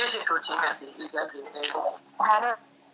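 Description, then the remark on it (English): A voice comes through a phone speaker, thin and distorted, cutting in and out in choppy bursts over a steady electrical hum, with a louder garbled burst near the end. “Yes, the phone is on the loudspeaker. That's why it's breaking and it's making noise.”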